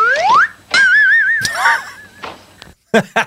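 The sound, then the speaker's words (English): A slide whistle swoops upward, then warbles in a wavering tone with a few more bending glides, marking the punchline of a joke. It is loud, and a couple of brief vocal bursts follow near the end. “When you have to have a slide whistle.”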